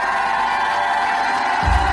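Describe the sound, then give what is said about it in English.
A large crowd shouts and cheers together in a steady, loud roar with scattered whoops, sustained throughout without a break, swelling slightly at the very end. “If that is you, shout like you never shouted in your life.”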